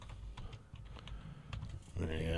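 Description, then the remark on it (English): Rapid, uneven clicking of keys on a computer keyboard, fairly quiet, with a voice briefly murmuring in the last half second. “I can't see what I'm typing.”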